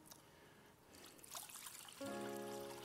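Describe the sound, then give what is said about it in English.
Water trickles and splashes steadily into a basin, poured for a symbolic ceremonial hand washing during the Lord's Supper, the sound growing fuller and louder partway through as the pour takes on a ringing, hollow tone; no one speaks. “So set this water up, and I don't normally do this, but I wanted you to know that symbolically what they would have done in that day is they would have washed their hands ceremonially.”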